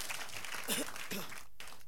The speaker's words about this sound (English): Somebody clap your hands for the reading of the word of God.